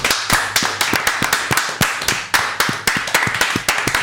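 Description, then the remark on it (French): Several people clap their hands together on a countdown cue, giving real applause, in a brisk, loud burst, the sharp claps overlapping in a quick irregular patter that keeps going for about four seconds with no talking. “3, ah, 2, des vrais applaudissements, ouais.”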